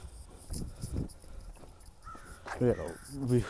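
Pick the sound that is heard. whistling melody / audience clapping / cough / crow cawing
crow cawing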